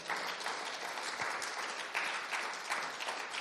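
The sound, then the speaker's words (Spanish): A church audience gives a strong round of applause to God, a dense, sustained wash of many hands clapping at an even loudness for several seconds, with no voices standing out. “Dele fuerte aplauso a Él.”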